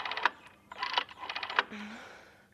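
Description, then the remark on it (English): The old-fashioned circle-shaped dial of a rotary phone is turned by fingers with rapid mechanical ratcheting clicks in a few bursts, followed by a softer whirring return and a brief low hum. No voices are heard. “She used every last speck of her energy to turn the old-fashioned circle-shaped dial with her fingers.”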